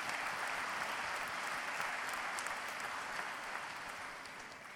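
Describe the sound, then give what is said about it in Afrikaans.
Steady, dense applause from an audience, a broad crackling wash of many hands clapping at once, holding level for several seconds before easing off slightly at the end, given for two people being thanked at the end of a Christmas carol evening. “Kom ons gee vir hulle 'n lekker hande klap.”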